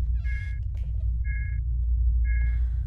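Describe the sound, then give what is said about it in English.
Three evenly spaced electronic beeps, about one per second, each a steady high-pitched tone, sound over a constant low rumble. No one speaks. “Sure, nothing bad ever accompanies a strange beeping.”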